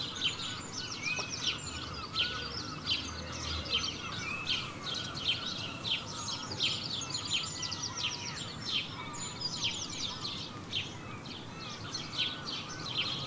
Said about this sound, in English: That was wonderful. I sat out there for about half an hour, had a cup of tea, just sitting there listening to that. I won't give you half an hour's worth of bird song because we haven't got that long. But it was fantastic.